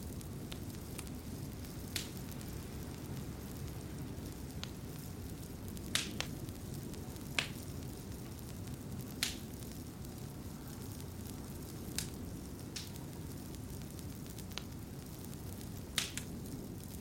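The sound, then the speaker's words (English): A fire crackles in a cottage hearth, with sharp, irregular pops and snaps breaking over a soft, steady low roar. It is fairly quiet, with no one talking. “The fire crackles and pops in the hearth, casting dancing shadows and a warm, flickering glow throughout the room.”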